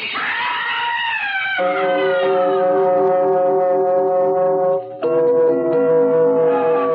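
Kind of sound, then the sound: vehicle, ambulance siren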